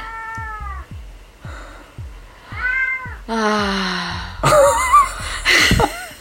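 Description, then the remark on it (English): A male cat meows repeatedly and insistently, several drawn-out, rising and falling cries, growing louder and more strained toward the end, with a steady low thumping underneath. “Sometimes I think he just wants to, like, kind of talk. And, I mean, I would talk back to him, but we are trying to record a podcast episode.”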